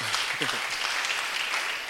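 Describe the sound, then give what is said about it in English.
An audience claps together in a dense, steady patter of many hands that holds at an even loudness throughout, with a voice briefly audible beneath it early on. “Oh, if you are clapping, you can clap.”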